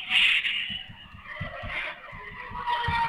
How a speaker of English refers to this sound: Yeah, I can hear the cars ripping by you. Are you stranded again? I'm stuck in a little bit of a traffic jam on 131. Oh, yeah. Northbound? Southbound, down by the casino.